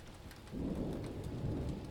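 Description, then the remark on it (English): Heavy rain pours steadily with a deep rumble of thunder swelling in about halfway through, a dense, continuous storm roar with no voices. A window shakes, rattling in its casing, as rain pools over the grass and floods the sidewalks at the courtyard of the University of Alice. “The window shakes, rattling in its casing, and the rain is thick, tangible globs that pile up and pool over the grass, flooding the sidewalks.”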